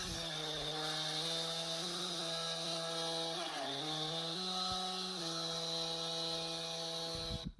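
A loud, continuous chainsaw drone pitch-corrected into steady musical notes, its buzzing tone stepping between distinct pitches like a sung melody, running unbroken for several seconds before cutting off.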